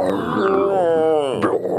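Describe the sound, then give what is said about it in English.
A person vocally imitates the growling roar of a movie tornado, a deep throaty rumble whose pitch swells and bends for about two seconds, with no other sounds around it. “They sometimes sound like burping or something, right?”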